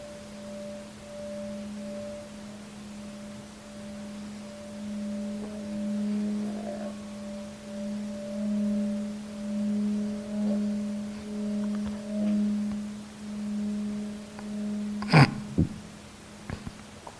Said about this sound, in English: I'm now going to ring the gong. Allow the gong to take you out from the meditation into the next session.